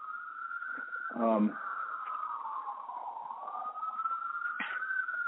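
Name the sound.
ambulance siren passing outside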